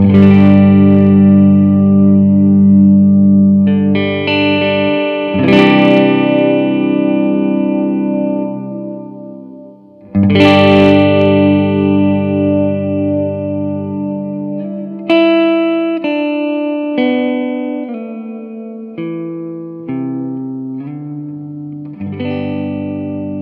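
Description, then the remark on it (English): Electric guitar chords played through a pedal on its swell setting ring out with a reverb that swells up behind each strum, blooming into a washy, sustained tail; loud and alone, with later single notes sliding into slightly dissonant overlaps. “So right now we're going to set it to have the reverb swell up.”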